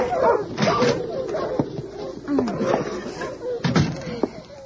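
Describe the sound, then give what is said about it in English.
Several sled dogs of a dog team bark and yelp excitedly in a busy, overlapping chorus as a young girl unharnesses them in front of a wooden cabin after several days of snow, with a few sharp thumps mixed in, fairly loud throughout. “It has been snowing for several days, and the drifts are piled high against the snug wooden cabin in front of which a young girl is unharnessing a dog team.”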